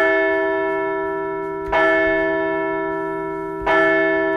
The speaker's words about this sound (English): Nola Cruz, the offense scored and tacked on, and now we're going to ring the bell for a second straight W.